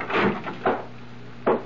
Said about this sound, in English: I waited for the bedroom door to open, and it did.